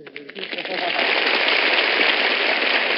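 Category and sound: crowd, audience applause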